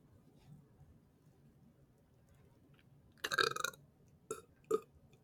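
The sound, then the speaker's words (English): A loud, rough burp after eating chili rips out after a few quiet seconds, followed by two shorter throaty bursts, with low background murmur. “Got that chili burp.”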